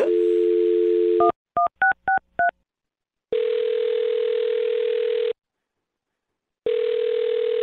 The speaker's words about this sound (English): Okay, I'll dial her phone number right now and see if we can get her on the phone, okay?